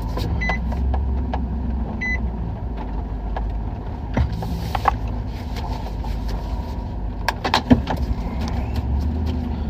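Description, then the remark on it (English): A car is driven a short distance, its steady low engine and road rumble filling the whole stretch, with a couple of brief electronic beeps near the start and scattered clicks and knocks. No one speaks. “I'm gonna move my car because I don't have a good view of the aircraft carrier.”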